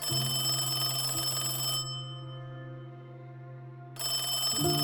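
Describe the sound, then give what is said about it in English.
An old-style telephone bell rings loudly just before dinner, continuously, pauses for about two seconds, then starts ringing again; it is left to ring three times before being answered. The sound is steady, with no voices. “Then, just before dinner, the phone rang. I let it ring 3 times.”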